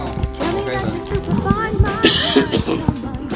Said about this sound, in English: We're back, and I'm still coughing. There's no question about it. Like I said, some people have this. What do you think it was? Bronchitis? Yeah, bronchitis. Probably residual bronchitis.